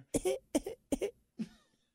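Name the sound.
voice imitating a cough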